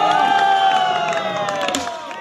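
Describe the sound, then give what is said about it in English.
A crowd cheers loudly and steadily, a dense roar of many voices with high yells and whistle-like tones running through it, easing off slightly near the end. “Are you ready to hear the crowd?”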